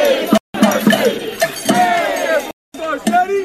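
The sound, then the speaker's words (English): Hundreds of BLM protesters outside LA Mayor Eric Garcetti's home scream and yell, shouting "F. Garcetti": loud overlapping voices in a steady chaotic roar, broken by two brief cuts to silence where the audio is muted. “They're screaming, yelling, obviously.”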